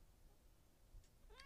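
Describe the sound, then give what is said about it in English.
A single short meow from a female pet cat, rising in pitch, comes in right at the end after a quiet, low rumbling stretch with no talking. The meow is fairly faint and gets cut off. “You're going to fill out a crossword puzzle that my cat created. So you're going to come. Tongues. Do you have more to say?”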